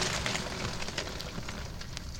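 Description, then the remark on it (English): A coal truck unloads, a steady stream of coal pieces clattering and clinking over a low rumble, with sharper bright clinks popping out now and then. No one speaks. “According to this, it's a coal truck unloading.”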